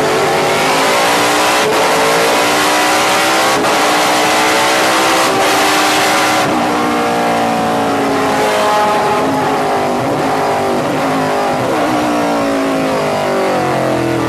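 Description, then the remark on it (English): A race car driven hard on a track: its loud engine revs and screams continuously, pitch climbing and dropping through gear changes as it accelerates, with no voices over it. “So do you know this track, or do you have to learn it as you go? I know it. I don't know it in this car, though.”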